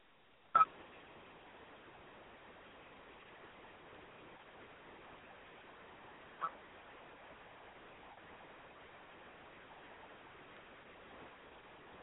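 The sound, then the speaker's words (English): A muffled, narrow-band phone line hisses steadily, broken by two sharp digital clicks or glitches, one near the start and another midway, as the call briefly breaks up. “Hear that little bit of break in his phone.”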